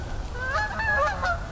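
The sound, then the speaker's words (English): Several Canada geese honk in quick, overlapping calls, their nasal cries rising and falling over a steady low outdoor rumble, with no one talking. “Some Canada geese.”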